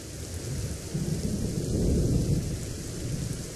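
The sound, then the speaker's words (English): Steady rain pours down while a deep, rolling rumble of thunder swells in the middle and fades away, with no voices present. “Portland, a highly eclectic city, is known for many things, including its 10 beautiful bridges straddling the Willamette River, its burgeoning wine movement, its dedication to sustainability, but most of all, its rain.”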